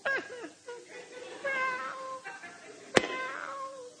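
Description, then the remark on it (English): A cat named Motorboat, shut in the hall, meows over and over, drawn-out wavering calls following one another with barely a pause, fairly loud, with a single sharp knock partway through. “Let her meow. Meow! I mean, it's just nonstop.”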